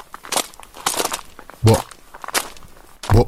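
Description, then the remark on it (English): Heavy footsteps thud along at a steady walking pace, each step a broad, crunchy impact with a deeper thump on a few, fairly loud with no talking. “It says, you can also hear his heavy footsteps in the corridors.”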